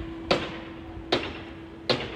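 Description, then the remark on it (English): Hammering by a man hammering something in: three sharp, evenly spaced hammer strikes roughly a second apart, moderately loud, over a steady low hum with no talking. “Oh, this fucking guy with the goddamn hammer.”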